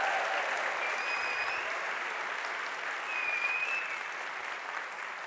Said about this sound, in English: And now they burst into amazing applause.